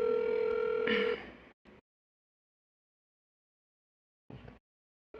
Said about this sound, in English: Let's do a little phone call. I'm gonna let … talk to her. Let's see if she answers.